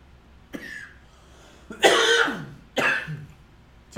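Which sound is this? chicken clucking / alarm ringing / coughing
coughing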